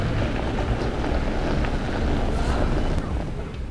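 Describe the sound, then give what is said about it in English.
A train rumbles past beside a bridge and a river, a loud, steady roar of low rolling noise and rushing hiss that holds without a break from start to finish, with no voices. “So this is one of the wonderful trains that we heard from that day.”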